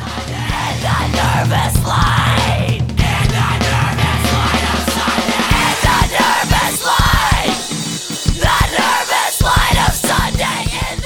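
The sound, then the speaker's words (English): The ending of a song: loud, strained screaming vocals, largely unaccompanied, over pounding drums, with a low sustained rumble early on that drops away halfway through, leaving raw yells and sharp drum hits. “The ending where it's the like a cappella and drums screaming.”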